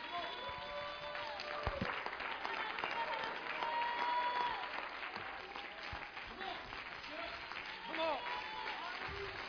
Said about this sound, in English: You ought to stand and clap your hands just because you support this man. Just because you love this man. Somebody ought to be clapping their hands just to let him know you're praying for him.